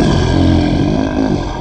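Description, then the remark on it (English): A person growls out a loud, raspy imitation of a lion's roar, one sustained rough burst lasting over a second, heavily distorted. “As they look at you and then the lion just looks at Madam Kilsight goes.”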